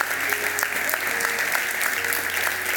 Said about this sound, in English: Come on, church. Let's give them a big round of applause as they come. Let's give them a big round of applause.